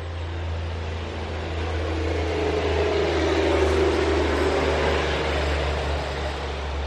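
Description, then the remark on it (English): An old logging truck rumbles past, its deep engine drone and road noise building toward the middle and then easing off, with a steady low hum underneath and no voices. “Some like to drive their logging trucks.”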